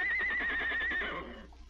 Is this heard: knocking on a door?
no